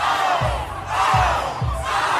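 A loud crowd of students cheers and shouts wildly during a dance-off between an 8th-grade teacher and a 13-year-old student, a dense continuous roar of voices with excited whoops, swelling in surges over a few seconds with low thumping beats underneath.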